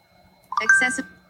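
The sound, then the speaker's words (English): A short electronic confirmation beep from a phone, signalling accessibility mode is enabled after two fingers are held on the screen, a steady mid-pitched tone lasting under a second, with a brief burst of other sound around it. “Continue touching the screen until you hear a beep to enable accessibility mode.”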